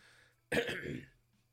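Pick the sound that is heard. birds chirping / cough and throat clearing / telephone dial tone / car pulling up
cough and throat clearing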